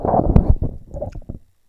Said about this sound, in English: made sure to slurp right into the microphone.